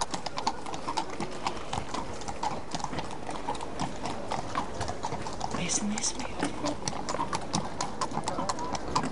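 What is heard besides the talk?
horse hooves clip-clopping past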